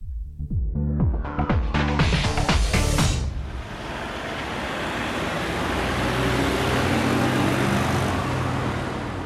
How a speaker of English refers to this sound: If you live or work near a road, you will be used to the sound of traffic. It is a common part of everyday life, which most of us have grown up with.